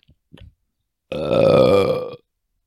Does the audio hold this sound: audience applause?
no